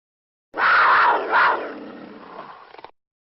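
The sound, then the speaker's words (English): A mountain lion roar sound effect: a loud, raspy roar lasting about two seconds, swelling twice before trailing off into a rough, growling fade, with no talking around it. “I do want to get a shout out to Mountain Lion. Donnie, please run my sound.”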